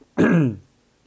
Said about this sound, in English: As I cough again and try and use my MacBook as a touchscreen, which it's not.